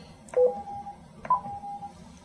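Two electronic confirmation beeps from a radio transceiver after its default button is pushed and held, each a steady mid-pitched tone lasting about half a second, spaced roughly a second apart over a low background hum.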